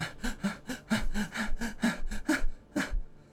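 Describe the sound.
A voice imitates rapid, heavy hyperventilating breaths of a character breathing very heavily, about a dozen harsh gasping pulses in quick rhythm, fairly loud, with a brief pause before one final breath.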